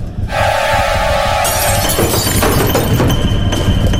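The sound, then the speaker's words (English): A window pane in a fish house shatters loudly in a sustained crash, with fresh bursts of breaking around the middle and a steady ringing tone running underneath for the first half. No one speaks. “He stared at me through the broken pane.”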